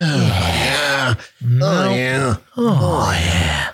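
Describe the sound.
A voice makes three loud, drawn-out groaning grunts separated by short gasping pauses, an exaggerated imitation of heavy, strained breathing.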